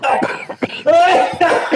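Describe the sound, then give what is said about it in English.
A series of loud coughs in quick succession during a public Twitter Space call, harsh and raspy, with a longer hacking cough in the middle and no talking around them. “Could you try not to cough on that?”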